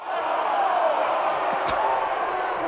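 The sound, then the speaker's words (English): A crowd sound effect played at the press of a button: a dense crowd roar of many voices shouting and whooping at once, steady and loud throughout, with a few sharper yells poking out of the din. “Do you have like a horny crowd sound? Of course. Hold on. Press the horny crowd button.”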